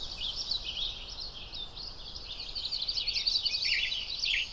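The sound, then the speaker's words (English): A western tanager calls from tree branches within a dense, steady wash of high, raspy, short chirping notes, moderately loud and continuous throughout, with brief bursts of sharper notes and no voices. “A western tanager.”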